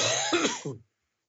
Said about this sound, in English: Sorry, by the way, just want to say that I'm going to be probably coughing. Sorry to all the viewers out there. I'll try to cover up, put the phone away as I cough, but I'm getting over some allergies. It's been allergy season here in Texas.